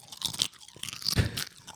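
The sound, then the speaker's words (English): Crisp crunching of chips with guacamole being chewed, a quick series of loud bites and grinding munches with no talking. “He's getting crumbs all over the place, too. Crunching away.”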